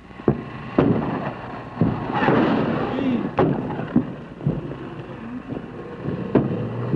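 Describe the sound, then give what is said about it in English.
Enemy artillery shelling of the Marines' base at Contien, from about 100 big guns plus mortars and rockets: sharp booms land in an uneven series over a steady, rumbling roar, with a louder, longer swell of noise midway through. “The enemy artillery, about 100 big guns plus mortars and rockets, can pound Contien around the clock with devastating effect.”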